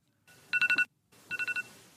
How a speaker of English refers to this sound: By the way, I hate that fucking noise. I hate that alarm, noise. Too. Hey, it's so jarring. It is the worst alarm noise.